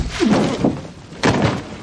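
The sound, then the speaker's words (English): A few heavy, dull thumps land, like a hard blow striking a body, with a couple of sharper knocks spread unevenly across a short, noisy stretch without talking. In the show Chuck, Casey knocks Agent Cole Barker unconscious. “Oh, and Casey's about to knock him unconscious.”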